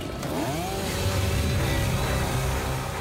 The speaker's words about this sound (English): They find what they're looking for near the edge of the Coffee Park neighborhood. They'll need to chainsaw through backyard fences. Right here. You want to cut down that way on the post down there?